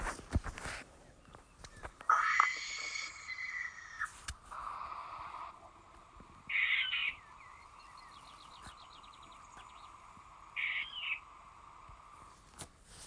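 A barn owl gives several harsh, hoarse screeching hisses, about three drawn-out raspy bursts spaced a few seconds apart, loud, with faint background chirps between them.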